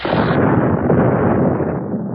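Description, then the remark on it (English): A loud explosion in an observatory, with a heavy roaring rumble that fills the whole moment and holds steady for about two seconds before easing slightly, with no voices present. “After the explosion, the darkness descended again, and there was silence.”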